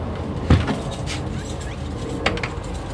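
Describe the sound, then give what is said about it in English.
An old wooden Dutch door is pushed and rattled as someone struggles to shut it, with one heavy thud followed later by a lighter knock over a steady low background rumble. “That also means we get to test out the old Dutch door again.”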